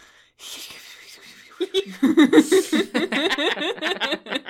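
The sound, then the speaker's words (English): A voice imitates the snuffling snore of a sleeping kobold: a breathy, hissing inhale, then a rapid run of nasal, snorting grunts, fairly loud, with no words. “Can we get a sound effect for the snuffling snoring of the sleeping kobold?”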